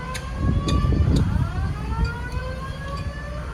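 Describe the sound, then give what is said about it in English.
A hotel fire alarm siren in Clearwater wails steadily at 4:30 in the morning, set off by a golf cart fire, its tone gliding up and down in overlapping sweeps over a low, rumbling background noise, with no voices. “There was a fire in our hotel.”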